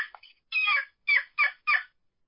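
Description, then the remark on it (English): A poplar-wood turkey call, usually lower in tone than a walnut one, played over a cell phone, yelps: a few faint short chirps, a longer raspy note, then three evenly spaced, clipped yelps, scratchy and fairly high, with no talking. “Here's the poplar, a little lower usually.”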